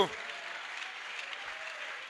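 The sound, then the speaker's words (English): A church crowd claps steadily in praise of Jesus in a dense, continuous patter of applause, broad and bright, holding at an even level for about two seconds with no individual voices standing out. “Give a mighty clap to Jesus.”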